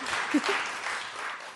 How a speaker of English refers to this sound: Thank you so much. Another round of applause for Erie Essex, please.